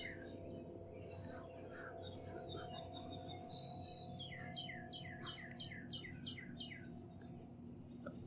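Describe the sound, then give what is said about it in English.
A male cardinal sings a run of about ten clear, downslurred whistled notes in quick succession over a steady low rumble of outdoor background noise. Other faint bird chirps come earlier. “Oh, I hear a cardinal also. Yep. Male cardinal.”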